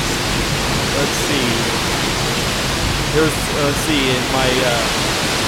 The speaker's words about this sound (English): But this is still a good, heavy, soaking rain. I mean, it's raining hard. Like, you know, full-on shower hard for this entire time, the last 20 minutes or so. This is a gully washer.